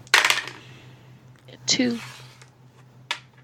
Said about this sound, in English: So let's roll our dice and then we'll figure out how this wraps up for our end game.